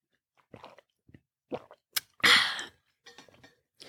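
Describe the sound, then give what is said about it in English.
Sips of water from a glass: soft mouth and lip noises, a light clink, then a short airy slurp followed by faint swallowing sounds, with no one talking. “hold on, let me get a glass of water or a sip of water.”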